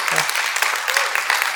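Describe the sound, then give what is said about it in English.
An audience applauds the dads on Father's Day, a dense, steady wash of many hands clapping at once, fairly loud and sustained from start to finish with no pauses. “Maybe give a hand to the dads. We clapped at Mother's Day.”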